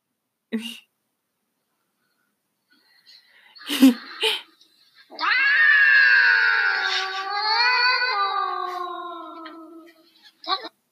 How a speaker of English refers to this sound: And somebody's holding a microphone up to this cat. And it's like one of those microphones that makes like an echo, like when you speak into it. Yeah. And he like meows into it.